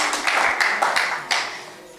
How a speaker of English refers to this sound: I think she deserves a round of applause for all her work.